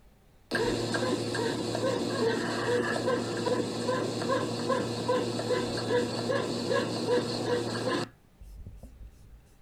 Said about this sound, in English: I know it sounds just like a baby's heart rate, but that's the bed. That's the bed.